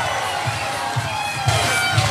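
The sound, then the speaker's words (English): A large hometown crowd at Neely Henry in Gaston, Alabama, cheers and roars continuously as a new Elite Series champion is crowned on a Monday afternoon, with a steady rhythmic thumping underneath, like a beat or stomping, keeping the noise loud and sustained throughout. “Gaston, I need you going crazy and showing them what we do here on a Monday afternoon.”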